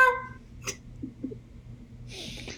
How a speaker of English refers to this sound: We have a squeaky gavel. Squeaky gavel of justice.